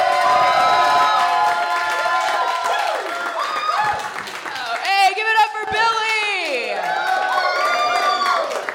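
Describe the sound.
A crowd breaks into loud, sustained applause with whoops and cheering, many voices rising and falling in pitch over steady clapping throughout.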